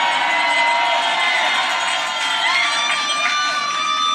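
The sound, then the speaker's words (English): A large crowd at a campaign event in New Hampshire cheers and shouts continuously and loudly, with bells clanging through the roar, their bright ringing tones cutting above the steady wall of noise. “You hear those bells in the background? Aren't those reserved usually for like Olympic ski runs, things like that?”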